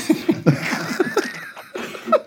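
A person breaks into a rough coughing fit, with several harsh, raspy bursts coming in quick irregular succession and a strained, wheezy edge, fairly loud throughout.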